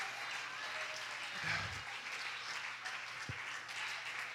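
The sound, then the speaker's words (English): An audience at a church service claps steadily in praise, a dense, continuous wash of applause that stays fairly even in loudness throughout, with a brief low thump partway through. “I wonder who in the room right now, deep down inside, you're not just clapping about because of what Brother Bailey did and Sister Nona Freeman did, but there's something within you that says, I want that.”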